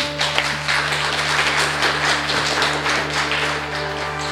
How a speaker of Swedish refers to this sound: Vi avrundar med en applåd tycker jag.